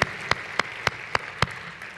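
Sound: audience applause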